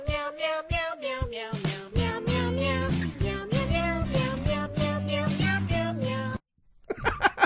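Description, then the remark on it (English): A catchy tune built from repeated meow sounds over a steady beat and bass line, loud and rhythmic, stopping abruptly before a brief burst of noise at the end. “You're terrorizing everyone that listens to this meow, podcast. Meow, meow, meow, meow, meow, meow.”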